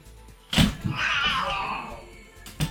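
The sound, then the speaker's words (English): A cat lets out a long, drawn-out yowl lasting about a second, fairly loud, framed by a couple of dull thumps before and after. “And my cat is in a mood right now.”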